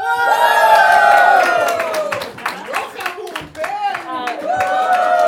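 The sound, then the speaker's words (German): A crowd erupts in loud, sustained cheering and shouting with whoops and scattered clapping, briefly dipping before swelling again near the end. “So, sei ein bisschen mehr wie Amerikaner. So schreien, ja.”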